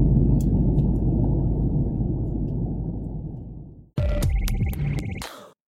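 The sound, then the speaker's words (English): Loud, steady low roar of airplane cabin noise in flight, a constant droning rumble for about four seconds, then cut off abruptly and replaced by a brief burst of brighter, tonal sound. “And I'm on a plane, that's why it sounds so loud.”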